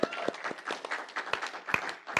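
polite audience applause

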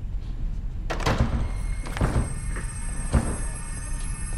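door being broken

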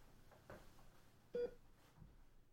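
hospital machines beeping

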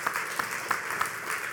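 audience hand clapping

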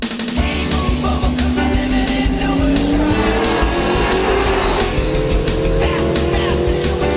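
sports car driving

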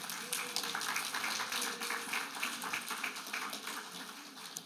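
audience applause

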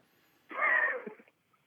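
sneeze

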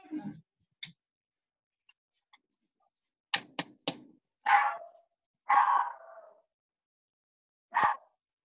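dog crying

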